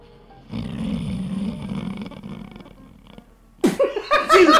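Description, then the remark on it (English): A pet's long, low, rumbling snore drones steadily for about three seconds, fairly loud, then fades as people break into laughter and chatter. “Just the sound of Simon snoring.”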